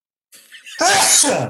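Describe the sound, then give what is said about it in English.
A single loud sneeze: a soft, breathy intake builds for a moment, then bursts into a forceful, explosive blast that trails off briefly. No talking accompanies it. “And I am gonna sneeze again right now.”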